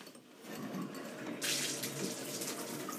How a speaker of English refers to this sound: And so yeah, I'm gonna take a shower.